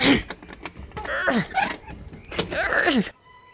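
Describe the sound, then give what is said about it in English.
A shed door is pulled open on stiff, rusted hinges in two long, strained groans, fairly loud, with effortful grunting as a man fights against the hinges. It sounds partly voiced, like someone imitating the creak. “After they fought their way through, he pulled on the door to the shed. He grunted as he fought against the rusted hinges.”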